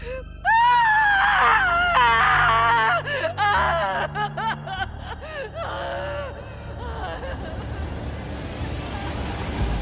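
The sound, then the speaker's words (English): Loud, wavering high-pitched screams and sobbing cries of a terrified, heartbroken person in a forest near a lake, in rapid emotional bursts, fading into a noisy, hissing background with low rumbling underneath. “The crickets, the frogs, and finally, my terrified, heartbroken screaming.”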